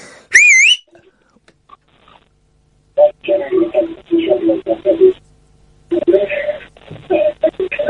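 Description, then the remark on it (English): A brief warbling electronic tone, a pause, then a tinny, narrow-band broadcast of the radio station Talk Sport with people talking, heard faintly through a telephone line from a caller listening to it. “He's listening to Talk Sport.”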